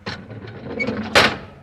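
The heavy door of a pressure chamber scrapes and rumbles as it swings, then slams shut with a single loud clank that rings briefly before fading.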